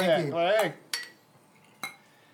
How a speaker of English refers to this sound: Cheers. Clinky. Clinky.